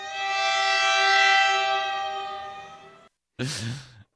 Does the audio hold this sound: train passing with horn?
yes